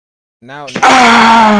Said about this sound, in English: Wait, hold on. Let me scream real quick so he knows how to edit all that shit out. Okay, go.